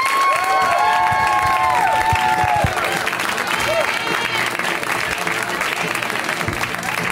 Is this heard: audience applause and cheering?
yes